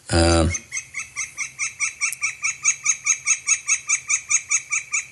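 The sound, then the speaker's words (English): A Northern flicker gives one loud, piercing hawk-like cry, then launches into a long, steady run of rapid, evenly spaced calls, clear, with no one talking. “It's almost like the call of a red-tailed hawk.”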